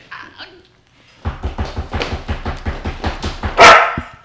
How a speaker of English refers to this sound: We got the guard dogs. We got the canines. Sick him. Sick him, boy.